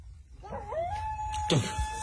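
A coyote howl rises and holds a long, steady high note, then breaks off into a short yelping burst that drops in pitch. It is fairly close and clear over a low background rumble.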